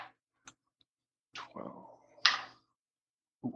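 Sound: dice being rolled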